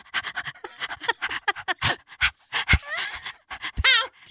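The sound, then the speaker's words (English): A person imitates heavy, rapid panting: quick breathy huffs in an uneven rhythm, broken by a few strained, whiny vocal squeaks near the end. “Breathing heavily. Yeah, he's just panting.”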